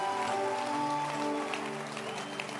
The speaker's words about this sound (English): I like your hand clap. It's beautiful.